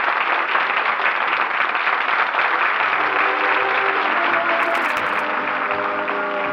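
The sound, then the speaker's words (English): A first-night theater audience at the Little Theater off Times Square, on their feet demanding encores as the curtain comes down on the final act of a new play, bursts into loud, sustained applause, a dense wash of many hands clapping at once with no break, holding steady throughout. “The first nighters are on their feet, demanding encores. Listen to them applaud.”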